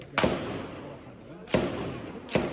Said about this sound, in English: A storm of gunfire and tear gas in a packed urban refugee camp. Israel's raid began early this morning.